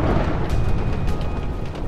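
A crash of thunder outside rolls as a deep, loud, continuous rumble, holding steady for about two seconds with a roaring low-end texture and no voices.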